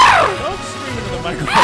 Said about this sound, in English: Don't scream into the microphone. Don't seriously stop doing that. Stop doing that. Stop doing that. You heard? Stop yelling into the microphone. Stop blowing out everybody's speakers.